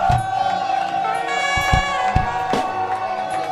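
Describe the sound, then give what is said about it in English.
A large audience at a worship service shouts and cheers continuously for Jesus over sustained music, with scattered loud bursts of voices and claps rising out of the steady roar. “Begin to make a noise unto the mighty God.”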